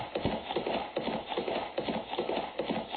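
Rhythmic clip-clop of horse hooves trotting steadily, a repeating pattern of hollow knocks at moderate loudness with no talking over it.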